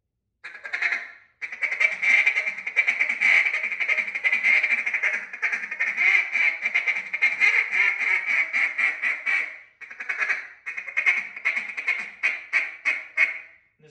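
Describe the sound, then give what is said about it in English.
A duck call blows its last feed chatter, a fast, continuous stream of loud clucking notes, pausing briefly before resuming and tapering into a few spaced quacks. “Then I'm going to go into my last feed.”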